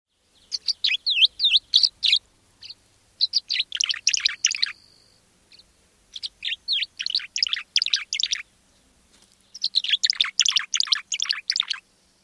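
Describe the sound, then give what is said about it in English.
A tree swallow sings alone, mixing bright chirps, thin whines and liquid gurgles in four quick bursts separated by brief pauses. “All About Birds say the tree swallow's song is composed of three sounds, a chirp, a whine, and a gurgle, which they mix and match in a variety of patterns.”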